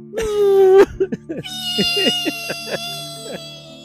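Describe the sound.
A voice imitates a deflating balloon: a loud, whiny squeal that sags slightly in pitch, then breaks into a string of sputtering, flapping bursts trailing off with a thin high whistle.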